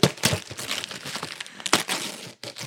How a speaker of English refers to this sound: Oh, you're good. You like ripping paper off.